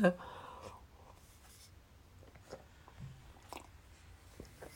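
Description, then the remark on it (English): Quiet sipping of tea in a studio: a brief knock at the start, then faint slurps and small mouth and cup clicks over a low background hum, with no talking. “Let me have a sip of tea.”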